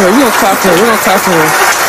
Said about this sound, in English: So, can I clap for you, baby? Let me clap for you. We're going to clap for her.